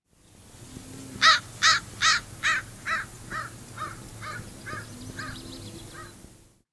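An American crow caws about a dozen times in a steady rhythm, the first calls loud, then gradually fading, with a faint low hum underneath.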